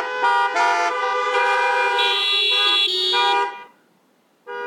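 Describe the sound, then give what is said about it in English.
Loud, blaring car and truck horns honk in a sustained overlapping blast for about three and a half seconds, then cut off into near silence before another honk begins. “You know, it's interesting, as you honk those horns, just a side note how my ADD kicks in.”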